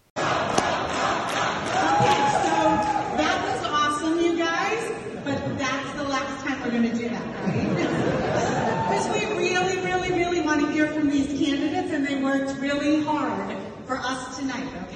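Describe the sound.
A large crowd chants loudly in unison for President Trump, many voices repeating a rhythmic phrase over and over, sustained for the whole stretch with a steady roar underneath.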